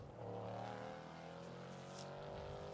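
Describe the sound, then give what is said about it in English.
Two Porsche 963 GTP prototype race cars in tandem roar steadily through the final corner, a sustained loud harmonic drone with slight pitch shifts as the cars pass by, no voices audible. “Porsche's in tandem coming through the final corner, the Porsche GTP 963s.”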